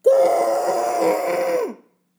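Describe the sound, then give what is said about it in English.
A voice imitates a muffled scream into a CPAP mask, as when waking from a nightmare: one loud, sustained, moaning cry at a steady mid pitch that lasts under two seconds, then slides down and cuts off into silence. “Screaming, and you previous podcast listeners might know, into my CPAP mask.”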